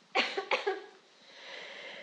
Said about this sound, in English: Start coughing now.